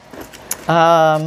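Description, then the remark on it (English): Small metal paper clips and safety pins rattle in a few light clicks as they are sorted, then a person's steady hummed tone takes over for the second half. “Okay, put you with the paper clips. And you with the safety pins.”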